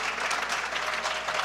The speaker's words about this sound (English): Let's praise the Lord. Let's give him a hand clap of praise in this place.